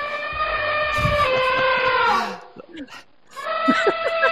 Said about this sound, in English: That, of course, is an elephant. What a fantastic noise. Now, what you might not know is that elephants, as well as that lovely trumpeting, they also use infrasonic communication.